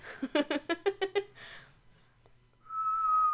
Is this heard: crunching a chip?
no